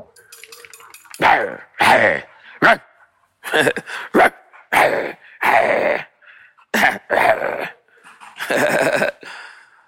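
A dog barks loudly, about a dozen sharp barks in an uneven rhythm, some single and some in quick pairs, with brief quiet gaps between them.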